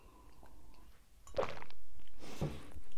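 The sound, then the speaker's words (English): Someone takes a sip of water, with two soft, wet mouth-and-swallow noises separated by a short pause against a quiet background. No one speaks. “I'm just going to have a little bit of water.”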